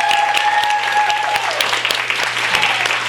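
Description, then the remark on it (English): An audience at a WriteGirl reading at Skylight Books applauds the mentees who read, a dense wash of many hands clapping at an even loudness for a few seconds, with a faint steady tone running underneath. “So I want to give a round of applause to all the mentees that read today.”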